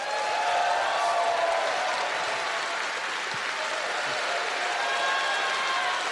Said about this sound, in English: Ladies and gentlemen, let's have a huge round of applause for Ricco Ross.